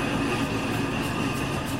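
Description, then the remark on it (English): A steam locomotive works hard just after turning off down into Manners Road, coal smoke belching from its chimney, giving a steady, dense rumble with a broad hiss of steam over a low, continuous roar, holding at a constant loud level with no voices. “The engine's working hard as we've just turned off down into Manners Road. Lots of that great coal smoke belching from the chimney now.”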